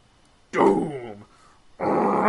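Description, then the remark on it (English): A person vocally imitates the 1954 Godzilla roar, as heard in Shin Godzilla: a loud, drawn-out growling cry that falls in pitch, a brief pause, then a second rough, raspy roar that runs to the end. “Like that 1954 roar with the big black screen with white letters, Shin Godzilla.”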